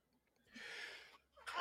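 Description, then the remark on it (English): A single sneeze: a breathy, hissing intake followed by a short pause and a sharp, loud burst of air at the end. No one speaks. “Excuse me. Bless you.”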